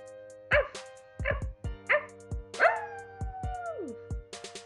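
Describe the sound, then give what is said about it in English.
A person loudly imitates a dog barking in a song: several sharp, yappy barks in quick succession, ending with a drawn-out howling whine that slides downward, prominent. “Hear my loud vocals as I do my obnoxious bark.”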